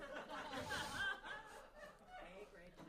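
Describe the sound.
A person mimics a chicken with a few quick, clucking bawk sounds, fairly loud, in a playful voice that edges toward a chuckle.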